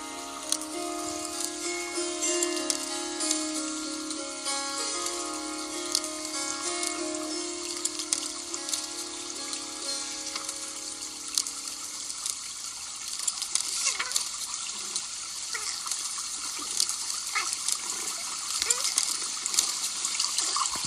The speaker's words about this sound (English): You hear more of the cat meowing. There's some turning of pages. I love this static background. This has a book of shadows that's opened up to, it opens to a few different pages.